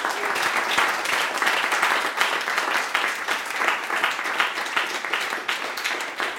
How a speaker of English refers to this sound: Please, a huge round of applause for our panel here. Thank you.